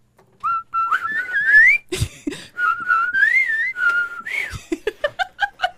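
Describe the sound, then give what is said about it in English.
Two people whistle the bouncy cartoon-style intro theme of Ed, Edd n Eddy together, fairly loud, in lilting phrases with short breaks, ending on a run of quick staccato notes. “You and I whistled it together for a little bit, so I got that.”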